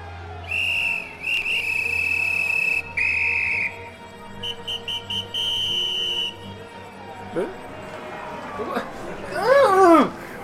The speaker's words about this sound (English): Harsh blow of a whistle stops everyone in their tracks.